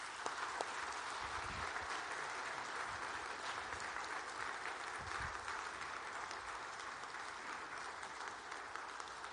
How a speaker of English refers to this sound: Brothers and sisters, would you please give them a round of applause?